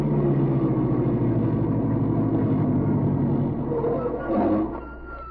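A car engine hums steadily with a low, throbbing drone, then eases down and settles into a quieter idle as the car stops near a small airport on the outskirts of a city.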